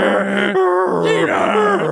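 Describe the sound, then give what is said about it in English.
A voice imitates a dial-up modem connecting, the ATDT tone: loud, continuous warbling tones that slide up and down in pitch, with a brief buzzy break in the middle, lasting about two seconds. “why did it make that noise? That's the ATDT tone.”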